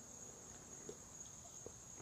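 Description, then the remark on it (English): A steady, high-pitched chorus of crickets trills without pause on a Florida evening, heard from outside on a back porch, soft, with a couple of faint clicks in the quiet night background and no one talking. “as you can probably tell from the background noise, I'm recording this outside on the back porch, so you can probably hear the crickets on this lovely Florida evening.”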